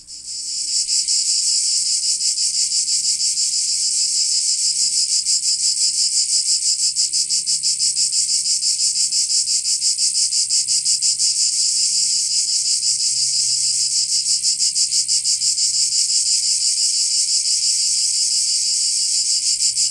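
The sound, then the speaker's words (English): A dense, continuous chorus of periodical cicadas, a loud high-pitched buzzing drone with a fast pulsing texture that holds steady for the whole stretch, with no voices. These insects emerge from the soil every 17 years to molt and mate. “These are cicadas.”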